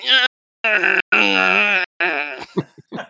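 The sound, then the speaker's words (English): A voice imitates the four-cylinder engine of a van being revved: four loud, buzzy vocal bursts, the third longest with its pitch climbing, followed by a few short breathy sputters. “We're getting in the car and I rev the engine of the van.”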